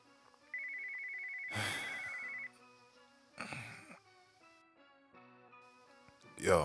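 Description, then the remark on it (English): A phone ringtone for an incoming call late at night rings out in a steady electronic pattern for about two seconds, accompanied by bursts of rustling noise and faint background tones, moderately loud. “Man, why are you calling so late?”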